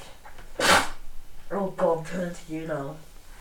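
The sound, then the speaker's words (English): A single sharp sneeze bursts out loudly, then a voice begins talking a moment later. “Bless you.”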